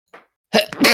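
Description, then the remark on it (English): A soft intake of breath followed by a single loud, abrupt sneeze, bursting with broad noisy energy. “Bless you.”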